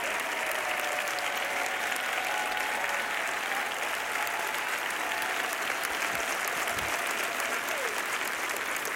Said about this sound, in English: So come on, let's give her a round of applause and appreciation and love. And let the cameras pan the audience right now.